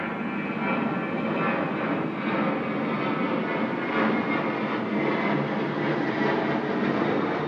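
A loud, steady roar of an airplane engine fills the whole stretch, a broad rushing drone that holds even without fading, with no voices.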